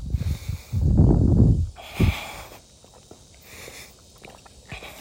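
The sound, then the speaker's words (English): Someone takes a sip of water during a run: a loud, rough slurping burst lasting about a second, then a short gulp, followed by quiet breathing and faint clicks. No one speaks. “Hold on, let me get a sip of water.”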